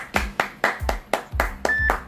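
Audience applause for a woman brought to the stage to read a report, in a steady, even rhythm of sharp claps, about four per second, for roughly two seconds, fairly loud with no voices over it.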